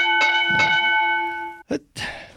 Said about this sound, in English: Do you have the bell? At least can you get that obnoxious sound?